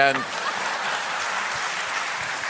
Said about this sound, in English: There we go. Yes, applause goes there. Great job.